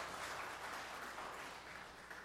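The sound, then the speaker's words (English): A round of applause from a crowd: dense, crackling clapping from many hands that holds steady throughout, fairly soft, with no voices over it. “Another round of applause for Brian Magnan for being nice and brave.”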